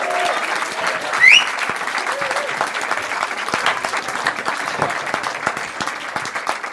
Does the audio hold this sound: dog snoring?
no